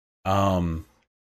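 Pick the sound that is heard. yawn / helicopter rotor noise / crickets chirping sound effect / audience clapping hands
yawn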